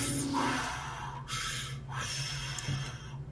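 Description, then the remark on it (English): A voice imitates a robot breathing deeply through vents: three long, hissing, airy breaths with brief pauses between them and a steady low hum underneath. “I'm going to go and I'm going to take a sit down and have some breaths through my vents.”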